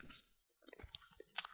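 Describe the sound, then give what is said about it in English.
Mouth sounds of someone biting into and chewing a stale edible packing peanut that dissolves without crunch: a bite, a brief pause, then soft, irregular chewing clicks and squishes, quiet and without any talking. “But if you want to, take a bite, I'm going to take a bite right now.”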